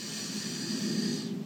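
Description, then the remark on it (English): A deep, airy breath drawn in and out, a steady rushing hiss that swells slightly and then eases off near the end, with no talking. “And I want you to begin taking deep breaths, the deepest breaths you've taken all week long.”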